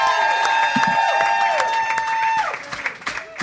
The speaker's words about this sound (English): Oh, thank you very much. Excellent. Thank you. Hey. Hey. Didn't want that to stop. I was really enjoying that. Yeah. You can keep clapping if you like.